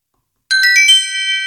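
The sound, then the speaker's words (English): A bright electronic chime signalling the start of a recording rings out after half a second of silence: four quick ascending tones that blend into a sustained, shimmering chord, fairly loud with no voices. “Once you hear the chime, we are going to begin.”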